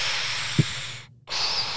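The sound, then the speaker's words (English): A voice imitates a mechanical respirator: a long, loud hissing inhale, a brief silent pause, then a hissing exhale, with no talking. “First, Darth Vader. Oh. Just do the breathing.”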